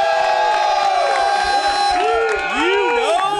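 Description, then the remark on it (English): A live audience at Lazy Dog cheers and applauds, a dense wash of overlapping voices with excited shouts and whoops rising over steady clapping, loud and continuous throughout. “Everybody give it up for Lazy Dog.”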